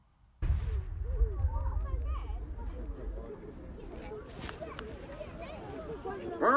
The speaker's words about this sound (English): This is highlights of the Anzac Day service that took place at the Invercargill Cenotaph, 7 a.m. on Wednesday, the 25th of April, 2018. We start with the cannon and the announcement and call to arms.